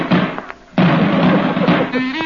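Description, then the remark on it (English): Gunshots crack out amid a loud, roaring crowd of some 5 million people screaming as the crowd pours out, with a brief dip in the din before the chaotic noise surges back and continues densely to the end. “5 million people are screaming. The gunshots.”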